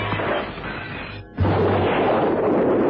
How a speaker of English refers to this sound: On the stroke of 8, Holmes lobbed the parcel at the window. The explosion rocked the room.